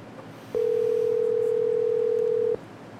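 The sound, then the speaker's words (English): The ringing tone of a phone call to a paramedic in Ionia, Michigan: one steady, loud electronic tone lasting about two seconds, heard over a faint background hum with no one speaking. “You hear the ringtone, you're like, we're business.”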